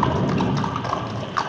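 storm rain

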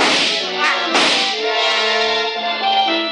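gunshots

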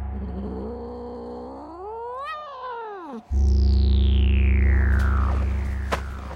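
cat caterwauling

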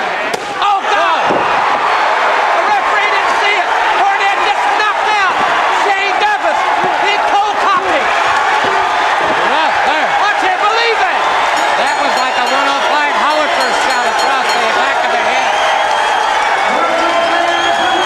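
wrestling arena crowd cheering

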